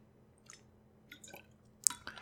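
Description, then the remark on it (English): Someone drinks water: a few soft, wet gulps and swallowing clicks at irregular intervals, ending in a slightly louder mouthy smack, with no talking. “I'm just gonna drink some water here.”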